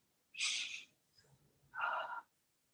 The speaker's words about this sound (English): So let's do some deep breathing.